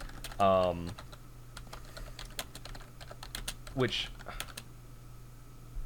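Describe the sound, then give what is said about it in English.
Crisp typing on a computer keyboard: quick, irregular key clicks run through the whole stretch over a low steady hum, with a couple of brief voice-like sounds breaking in. “Sorry, I'm just, that typing is coming through really loud.”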